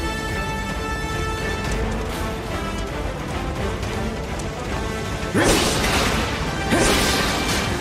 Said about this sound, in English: finishes the fight with a jumping slash. All done.